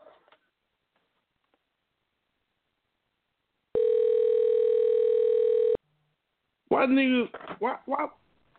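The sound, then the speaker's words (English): One loud, steady two-second ringback tone of an outgoing phone call placed late at night sounds clear, followed by a short pause and then a person speaking. “This late, she may answer, dog. Then this shit real loud as hell. Yeah, she gonna answer.”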